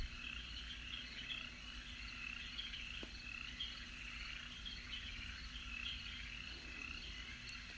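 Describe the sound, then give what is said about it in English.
A steady, continuous hum of insects, a dense high chirring chorus that holds an even level throughout with faint low rumble beneath and no voices. “You silently stroll, taking in your surroundings and listening to the hum of insects.”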